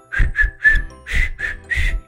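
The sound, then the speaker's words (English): A weak whistling attempt by a self-described terrible whistler: six short, breathy bursts in a halting rhythm, mostly rushing air with a thin, wavering tone that never settles into a clear melody. “Here's a sample of my whistling ability.”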